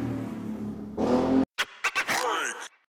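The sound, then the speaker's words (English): Motorcycles drone steadily, then roar up loudly and cut off, followed by a few short bursts of revving, with a voice mixed in over the noise. “Before I was rudely interrupted by the motorcycles.”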